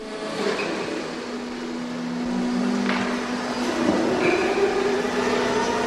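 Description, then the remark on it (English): A forklift truck works steadily in a spirit store warehouse in Middleton, its engine giving a continuous droning hum with a low tonal whine, broken by a few brief clanks and rattles. No one speaks. “So our next call in Middleton was to a warehouse where, against a background of a working forklift truck, we talked to spirit store and warehousing manager Brendan Monks.”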